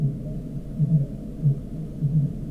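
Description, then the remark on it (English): Deep, low-pitched calls from a population of fin whales in the southwest pulse repeatedly in short bursts about every half second, recorded underwater during a survey against a steady low rumble, with no voices present. “A population of fin whales in the southwest.”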